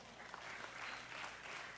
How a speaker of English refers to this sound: Come on. I don't know that this weak clapping really is telling to me.